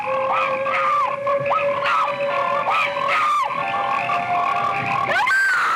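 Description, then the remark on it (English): A dense chorus of frogs croaking and chirping together, with overlapping repeated calls and occasional louder rasping croaks standing out, steady throughout with no voices. “American International Pictures presents Frogs, the story of the day nature strikes back.”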